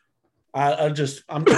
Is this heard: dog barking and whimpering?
no